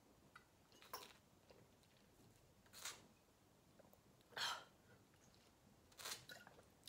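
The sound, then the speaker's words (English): Sips and swallows of water, four soft wet gulps spaced roughly evenly over a few seconds, quiet with no talking. “One second, let me take a sip of water because my mouth is dry.”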